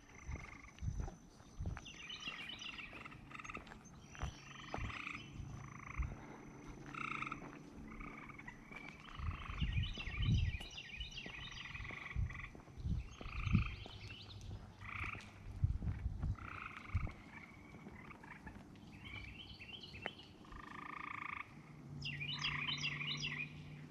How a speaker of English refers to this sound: One of those frogs that's like inside the stairwell and echoing. I heard it.